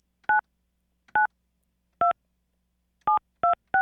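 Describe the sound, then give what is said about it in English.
A sequence of six short, clear touch-tone beeps as a phone number is dialed, each a dual-pitched electronic tone, spaced unevenly with the last three coming in quick succession, no voices. “Let's hear what the phone number actually sounds like.”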